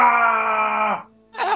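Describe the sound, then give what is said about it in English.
A loud, sustained voiced yell of pain from a character being burned, held for about a second and then cut off, followed after a brief pause by the start of another strained cry, with no words. “I know yelling noises.”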